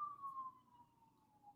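An emergency siren wails through a street in downtown Minneapolis during riots, its steady tone slowly sliding downward in pitch over a low rumble of traffic, with no one speaking.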